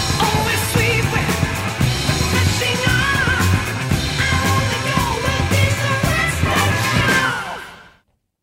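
A loud, dense rock track with pounding drums and distorted guitar, a high wailing vocal refrain soaring over the mix, playing steadily before abruptly cutting off near the end.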